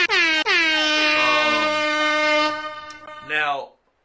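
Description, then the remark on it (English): A loud, brassy air horn blares in a short burst, cuts out, then sounds again in a long sustained blast before a final brief honk fades out. “Hit her with the air horns, please.”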